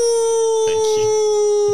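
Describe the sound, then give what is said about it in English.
A person's voice imitates a werewolf howl, one long, steady, loud note with only slight pitch drift, plus faint background shuffling. “You gonna give us a howl?”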